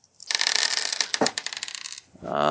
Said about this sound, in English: Dice sound so tiny. They are. They are tiny dice. He collects tiny dice.